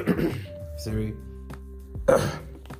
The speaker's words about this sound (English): Sorry, I'm having kind of a cough, and this place is cold actually.